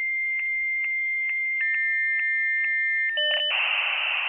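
A dial-up modem connecting: a steady high tone broken by regular clicks, then warbling dual tones that burst into a loud, harsh hiss of static, heard alone with no voices.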